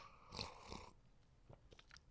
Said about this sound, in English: Apologize for the slurping. So I don't want to like burn myself.